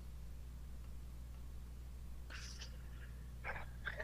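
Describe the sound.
Several short, faint cawing noises made by a person, a cluster of quick chirpy calls followed by two brief ones, rising over a steady low hum with no talking.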